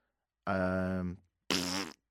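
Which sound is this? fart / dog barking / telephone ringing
fart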